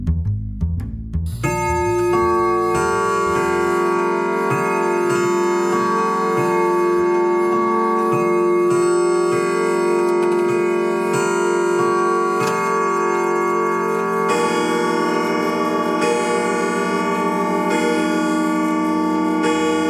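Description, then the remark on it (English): A clock strikes twelve with a steady series of evenly spaced bell chimes, sounding loud over a sustained, droning musical backdrop, with no talking. “So, turn out your lights, draw the shades, wrap up in your favorite blanket by the speaker, and listen for the 12 bells while we bring you tonight's outstanding topic.”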